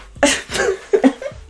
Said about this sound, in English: Excuse me, I coughed.